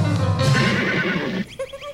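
horse neighing

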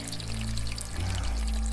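bacon frying

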